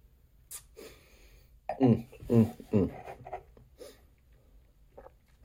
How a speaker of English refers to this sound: Just washing my mouth out with some water.